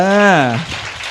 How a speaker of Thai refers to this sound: ปรบมือให้พวกเราก่อนเลย